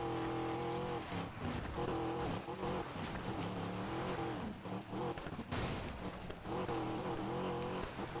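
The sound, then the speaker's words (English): A car engine roars steadily and loudly, its pitch rising and dropping as it revs through gears, with a brief squeal of tires partway through. No one speaks. “The issue is that it's hard for me to, like, control the car whenever I'm not going, like, at really, really high speeds, like, over 100 miles.”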